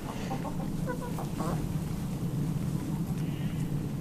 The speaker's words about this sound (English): I can hear a background, I can hear an aeroplane now.